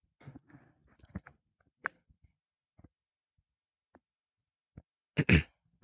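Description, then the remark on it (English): A man puts his headphones back on and adjusts them, getting situated: scattered soft clicks and rustling taps over several seconds, ending in a louder burst of scraping and fumbling, with no one talking. “Partner's getting his headphones back on, getting situated.”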